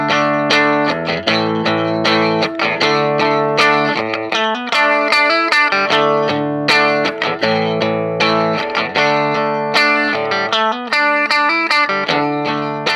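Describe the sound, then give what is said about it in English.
A clean electric guitar played straight through an amp, strumming bright, ringing chords in a steady rhythm with sustained notes between strums, fairly loud with no voices. “And my guitar, just through my amp, sounds like this, and we call that clean.”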